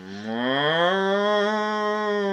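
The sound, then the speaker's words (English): A person imitates a cow with one long, low moo that rises slightly in pitch and holds steady, loud, with no other sounds around it. “Now we've both done our cow impressions.”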